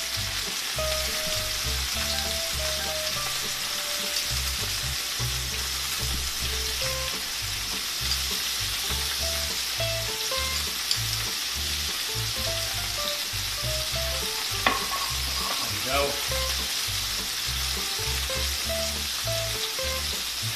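A steady, crackling sizzle of a lime butter caper sauce for fish frying in a pan, with faint scrapes and light clinks of a utensil stirring now and then, and no talking.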